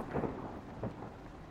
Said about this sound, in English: Lightning bolt. Yeah. Ooh. Through the wall here. And on through.